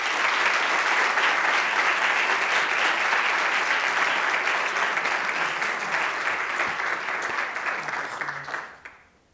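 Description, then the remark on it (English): At an event at the Hauenstein Center, a crowd claps steadily in a dense, sustained round of applause that holds for about eight seconds, then quickly tapers off and fades to near silence, with no voices heard. “Let's give another round of applause for somebody.”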